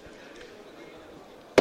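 A single sharp firework bang cracks out loudly at the very end, from fireworks above a stadium floodlight during a game, breaking through a steady low murmur of crowd noise.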